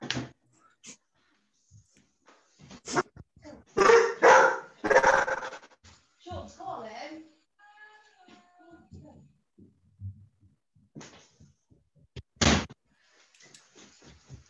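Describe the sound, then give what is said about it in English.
A puppy barks in a string of sharp yaps, loudest in a burst in the middle, with quieter yelps and a final bark trailing off afterward. “He's only a puppy.”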